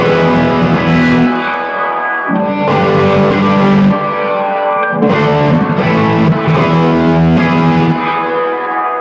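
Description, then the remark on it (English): Sustained electric guitar chords swirl and warble through a Mesa Boogie Revolver rotating speaker cabinet with a single rotating 12-inch speaker, washed in heavy reverb, played loud with a few strummed swells and no voices. “So it's basically a single 12 that rotates. It's not a baffle, it's actual speakers. So this has got reverb on it.”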